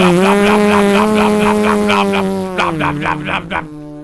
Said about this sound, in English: Start the car. Oh, my God. It's so loud.